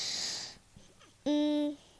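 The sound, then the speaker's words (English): An early morning yawn: a breathy, hissing intake of air, a brief pause, then a short, loud, steady voiced whine that cuts off abruptly. No talking. “That's an early morning yawn.”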